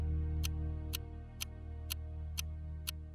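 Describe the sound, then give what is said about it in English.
A clock ticks steadily, six crisp, evenly spaced ticks about twice per second, sounding over a low, sustained droning hum with no voices. “The clock is ticking.”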